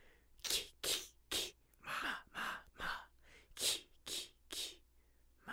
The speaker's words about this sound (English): Bless you. Bless you. Jeez. Are you dying? No, sometimes I have violent sneeze fits.